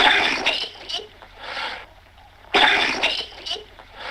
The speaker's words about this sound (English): he like has this like really high pitched cough and he's like, yeah, that doesn't sound like me. The sound that emits from my mouth isn't me. I got dizzy, nauseous, and confused, but what was really disturbing was the way this cough sounded.